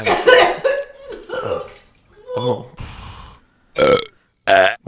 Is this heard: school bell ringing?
no